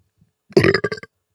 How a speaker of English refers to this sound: I got a burp. Hold on.